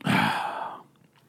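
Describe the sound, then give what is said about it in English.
A single sip of a drink: a brief airy slurp lasting under a second, fading into near silence, with no talking. “All right, let me take a sip.”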